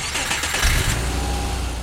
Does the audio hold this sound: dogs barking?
no